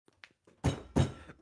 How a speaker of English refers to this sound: My desk is like filled with shit, so I had to like look. I had to like find where I could actually bang on my desk